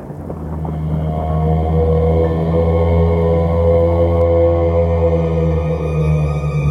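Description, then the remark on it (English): A deep, foghorn-like moan from the fog drones on steadily and loudly for several seconds, its low, rich harmonics holding with only slight wavering and no break, with no voices. “It sounded like a foghorn, but deeper, and it didn't stop.”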